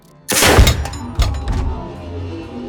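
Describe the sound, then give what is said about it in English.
A deafening shotgun blast in a confined space, firing a shaped charge penetrator round: a sharp, explosive crack with a heavy booming tail, followed about a second later by a second, softer thud as the echo rumbles away. “The gunshot in the confined space was deafening.”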